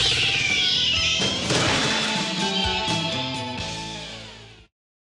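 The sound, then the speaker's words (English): A cat yowls loudly while something crashes and clatters around it, the noisy commotion running for a few seconds before cutting off abruptly, in the trailer for the film Suburban Commando. “Cats were harmed in the filming of this trailer.”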